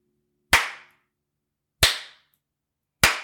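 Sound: hand clapping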